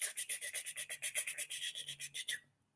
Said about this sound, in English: And oh, when we got on the roller coaster, one of them called Zack Zoomers, it took us up. That's the sound that the train track was making. It's a wooden roller coaster.